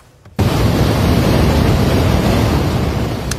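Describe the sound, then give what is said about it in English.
A sudden, powerful roar bursts in and holds steady as a dense, rumbling wash of noise: a snow avalanche crashing down a mountain in southern Switzerland after heavy snowfall, with no voices. “It almost looks like a waterfall, but it's actually an avalanche of snow crashing down a mountain in Switzerland.”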